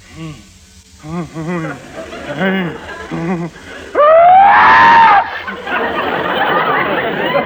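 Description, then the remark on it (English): An exaggerated comic sneeze made by a voice: wobbly, sputtering gasps build into a loud rising wail, then burst into a long, harsh hissing blast that trails on for seconds. “But if you sneeze like this... Well, it clearly indicates the symptoms of a general rhinitis condition. And if you sneeze like this...”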